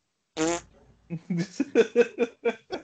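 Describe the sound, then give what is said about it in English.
A short, buzzy raspberry blown with the lips, like a fake fart, is followed by a run of rhythmic voiced bursts that sound like laughter, all moderately loud. “Just walk up beside him and make a fart sound.”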